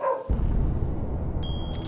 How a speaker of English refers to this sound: Oh, the dogs are off. The dogs. All across the valley, you can hear dogs barking, as if screaming out, run, get out while you can.